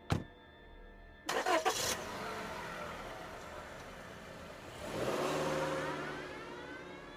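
A car door thuds shut, then an engine cranks and catches, idling before revving up as the car pulls away, rising in pitch as it accelerates. Clear, with no talking.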